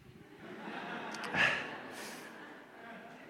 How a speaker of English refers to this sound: And I want to give a big sniff first.